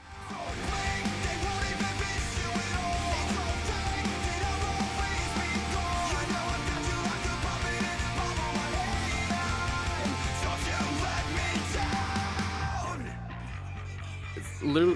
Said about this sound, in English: I mean, it's like a pop punk with breakdowns, with screaming, basically.